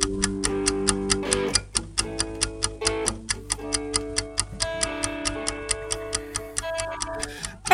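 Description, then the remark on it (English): A countdown timer for a timed trivia game segment ticks steadily and rapidly, several clicks per second, over a sustained, tense musical backing. The ticking is loud throughout, with no talking. “It looks like our main bit is UCT, Maestro, so we're going to get started in 3, 2, 1. Clock is running.”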